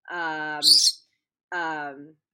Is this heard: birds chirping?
yes